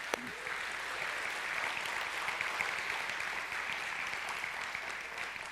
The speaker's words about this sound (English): All right, if you're happy to be here, let's just give out a shout of clapping for celebrating our grads for baptism. Isn't this a great day?